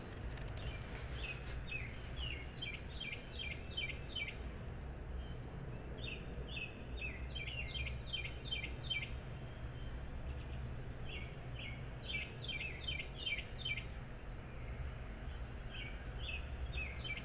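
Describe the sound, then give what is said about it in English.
Birds chirp and sing in repeated quick bursts of high, bright notes over a steady low outdoor rumble, with no voices. “Just like the birds.”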